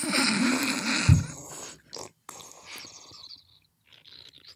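A bong bubbles and gurgles during a hit: a dense, rattling burst of bubbling at first, then weaker sputtering spurts with short pauses between them. No one speaks.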